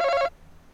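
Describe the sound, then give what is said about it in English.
A quiz contestant's buzzer: a single short electronic buzzer tone, bright and harmonic-rich, sounds loudly for about a quarter second and then cuts off abruptly into quiet background. “I saw and heard your buzzer first.”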